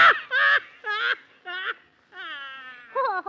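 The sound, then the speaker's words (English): A strange bird call: a series of six nasal, honking squawks with wobbling pitch, loud, separated by short pauses, with no talking. “Oh, well, that's the funniest kind of a bird I ever heard of.”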